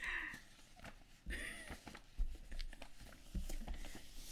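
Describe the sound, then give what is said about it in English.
Irregular rustling and crinkling of papers being shuffled and handled on a desk covered in papers as someone searches for a written note, with soft bursts of crumpling and sliding sheets and no talking. “I wrote it down somewhere. I have so many papers on this desk.”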